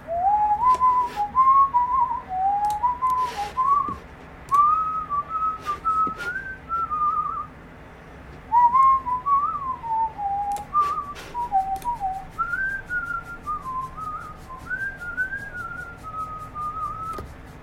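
Someone whistles a wandering, continuous melody, rising and falling in pitch, close and clear, with occasional faint clicks and rustles in the background and no talking.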